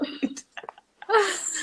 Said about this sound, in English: Okay, I'm really actually gonna cough and sniffle a lot. sorry. This whole podcast is gonna be coughing. People are gonna feel like they're getting sick from listening.